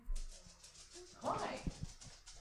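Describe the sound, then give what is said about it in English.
A dog named Pepper lets out a short bark over a steady background hiss, followed by a few low thumps and faint muffled voices. “It's whoever Pepper's barking at.”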